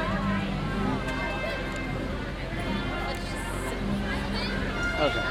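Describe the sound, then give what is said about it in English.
A steady murmur of many overlapping voices fills the theater, a dense crowd chatter with shuffling movement, as an audience leaves after a show at a park. “We're in the very front row, so it's just gonna say, let's just sit for a second, let the crowd clear out.”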